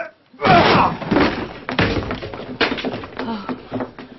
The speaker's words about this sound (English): The door looks pretty solid to me, but the two of us ought to be able to manage it. Again. And again.